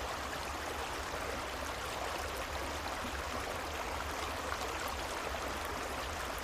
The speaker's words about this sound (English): And if you'd like, you can imagine you're laying beside a beautiful, gently flowing creek. And this sound of the creek will go on after the guided portion is over to help you fall deeply asleep.